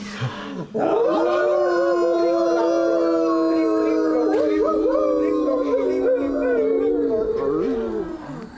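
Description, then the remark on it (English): Several human voices howl together in imitation of wolves, a sustained, loud, overlapping wail lasting about seven seconds after a brief vocal lead-in. “So I'm a wolf. I'm a wolf. Just I'm a wolf. You can all join too on the count of three.”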